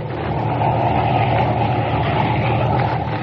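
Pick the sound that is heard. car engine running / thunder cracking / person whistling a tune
car engine running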